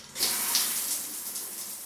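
Running shower water hisses in a steady, dense spray that starts abruptly and continues evenly at moderate loudness, with no voices.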